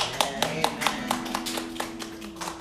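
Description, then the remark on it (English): A church audience gives a clap offering to God after a prayer, clapping in a steady, fairly quick rhythm, sharp bright strikes repeating for a few seconds over a low sustained musical tone, growing a little more scattered toward the end. “Well, if the Lord had touched you and the Word of God ministered you, let's give a clap offering to the God.”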